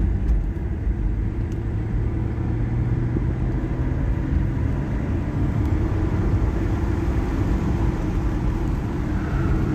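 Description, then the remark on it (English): A car engine drones steadily while driving, a continuous low rumble with road noise that stays even throughout, with no voices. “Oh, I love this car.”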